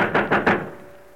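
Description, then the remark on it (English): Three heavy, evenly spaced thuds of a fist pounding on a locked door aboard a docking ship, loud, followed by a brief fading resonance and no voices. “Open this door. Open this door, Brandstetter. We'll break it down if you don't.”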